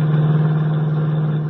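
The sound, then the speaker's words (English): A small delivery truck's engine runs with a steady, loud low hum and rumble as it drives on a highway climbing the hills north of the city, holding an even drone throughout with no voices. “Meanwhile, on one of the many highways climbing the hills to the north of the city, Henry Miller, the Atom Man, wearing cheap clothes, a checked cap and dark glasses, rides in the front seat of a small delivery truck beside the driver.”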